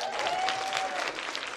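A burst of audience applause, dense steady clapping from many hands at a moderate level throughout, with a faint high tone running beneath it for the first second.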